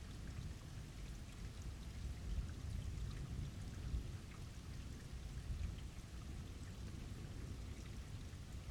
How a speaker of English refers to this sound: A really hard rain that washes the dust from the city, clearing out streets, watering plants, and cleaning the air itself.